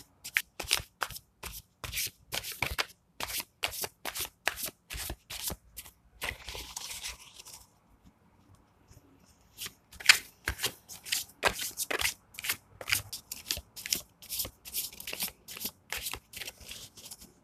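Tarot cards being shuffled in quick, crisp bursts of riffling and slapping, with a brief quieter pause in the middle before the rapid shuffling resumes. No one speaks.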